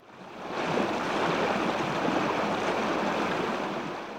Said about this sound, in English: You're walking along the bank of a rushing river when you see a person headed downstream who seems to be drowning.